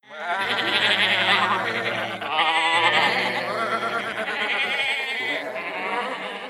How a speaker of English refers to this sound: So you got to be a detective, and you're going to listen throughout the episode to try and hear the sound of sheep baaing.